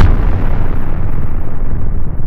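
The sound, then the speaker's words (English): A battle sound effect of blazing guns and sinking ships in a naval battle: a loud, continuous rumble of explosions with bursts of gunfire, a dense low-heavy roar that stays steady and fades slightly in the upper range, with no voices. “An epic battle begins. Guns blaze, ships sink to the bottom of the ocean.”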